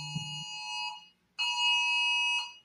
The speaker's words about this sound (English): Sorry, my phone is going off over here, some kind of Spanish alert.